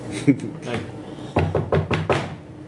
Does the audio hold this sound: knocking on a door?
yes